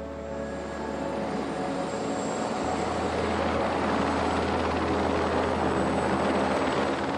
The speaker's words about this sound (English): Even in the most remote parts of the earth, there is the sound of machines. This is in the helicopter back in Greenland.